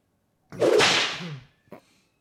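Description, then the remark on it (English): Air rushes out of a tiny balloon in a loud, raspy hiss for about a second, its pitch sliding downward, followed by one brief final sputter. “So apparently, someone is letting out air from a tiny balloon. In the room.”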